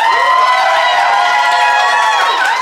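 A live audience in Phoenix applauds loudly and steadily, with cheers and whoops rising over the dense clapping throughout the short stretch.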